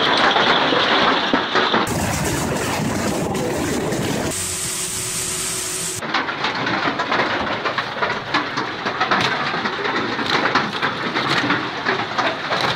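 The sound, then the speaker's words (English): Powerful hail pounds down on house roofs in settlements of the Krasnodar region, Russia, on 21 July 2018, in a loud, dense, unbroken clatter of hard impacts, with abrupt jumps in tone as the scene cuts between spots. No voices. “On the 21st of July 2018, powerful hail fell on the settlements from Timashevsk, Grukhovetsk, Kodinsky and Polsky district of the Krasnodar region.”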